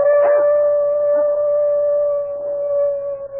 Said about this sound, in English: What is it? Your dog. It's howling about something.